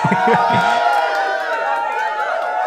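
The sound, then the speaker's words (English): A crowd applauds and cheers loudly for a few seconds, the clapping and excited voices blending into a steady, dense roar with no speaking. “Cue some claps.”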